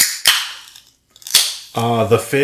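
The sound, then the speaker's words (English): Two fizzy drinks crack open one after the other, each a sharp pop trailing into a brief hissing fizz, followed by a voice making a sustained vocal sound. “The fizz. Hashtag double fizz.”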